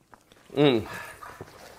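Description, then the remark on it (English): A dog lets out a single short bark-like yelp, followed by soft shuffling and scuffling noises. “Hey, stop. Sit.”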